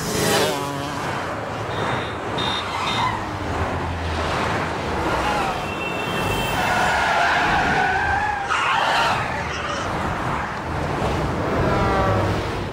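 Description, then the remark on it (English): Tires screech in long, squealing skids over a constant roar of passing highway traffic, several cars braking hard one after another, loud, with no voices. A film scene in which Eddie Murphy's character runs across the highway. “It's the scene where Eddie Murphy's character as the brother was just running across the highway like Frogger style, and then he actually made it, which is like, I was like, this dude's definitely getting hit by a car.”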